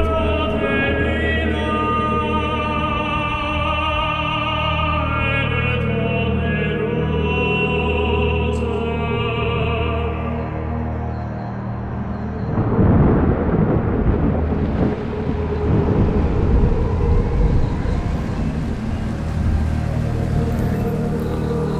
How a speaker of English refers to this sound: Listen. I love that sound. It'd be the cry of whales, crying out for their families. Once they get caught in one of these currents, they never get back on course.